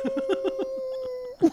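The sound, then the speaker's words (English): A person gives a long, steady imitation of a werewolf howl lasting over a second, while rhythmic laughter pulses underneath, ending in a short loud burst of laughter. “If you're going to just start howling at your athlete.”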